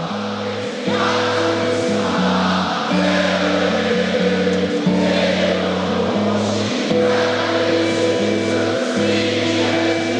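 A huge stadium crowd at a 2010 concert sings along in unison, loud and sustained. Thousands of voices hold long notes that step up and down through the melody with a steady rhythm.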